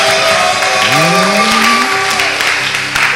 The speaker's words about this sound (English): I think we can clap our hands together for Jesus. We can clap for Jesus, for Jesus. We can clap your hands for Jesus.